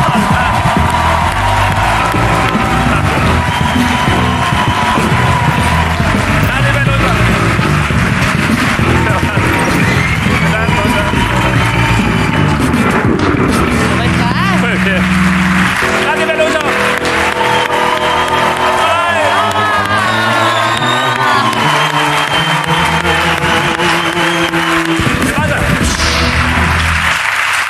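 A loud, sustained ovation: dense applause and crowd cheering fill the whole stretch, with scattered whoops and shouts rising over the clapping before it thins toward the end.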